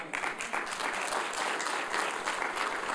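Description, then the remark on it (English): A room full of people claps steadily for a man who has just sung, a dense, sustained wash of applause filling the whole stretch at an even, moderately loud level with no voices rising above it. “we'd all give him a hand clap and praised his holy name.”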